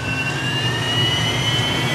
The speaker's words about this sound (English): The Viper engines scream into life and kick up a murky cloud of dirt.